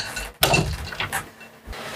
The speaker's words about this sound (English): I'm just trying to fix this chair quick.